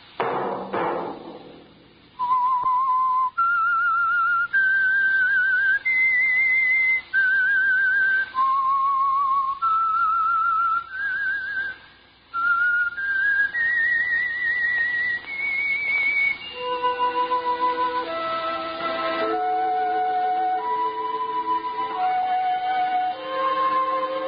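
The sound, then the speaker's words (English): The whistled theme of the radio program The Whistler, brought by the Signal Oil Company: a clear whistled melody of long held notes stepping up and down, followed by a lower, fuller instrumental phrase that carries the tune on without any voices. “Whistle be your signal for the Signal Oil program, The Whistler.”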